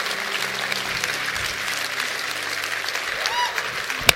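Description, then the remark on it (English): A church audience, standing after a sermon, claps their hands together in a dense, steady wash of applause, many overlapping claps blending into a continuous patter, with faint murmuring voices underneath and a sharp louder clap near the end. “Would everybody stand and act like you enjoyed the sermon and start clapping your hands, would you?”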